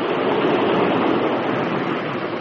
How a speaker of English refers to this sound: Heavens to Betsy, what was that? Relax, sugar. That was one of the water intakes being opened and shut, that's all.